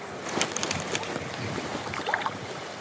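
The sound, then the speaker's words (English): Strong, biting wind roars and buffets steadily outdoors on the bank of a river pool during fishing, a dense rushing noise with a few louder gusts and no voices. “That wind is nasty.”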